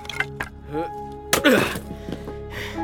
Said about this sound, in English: Stack this wood, why don't you? I'll keep chopping.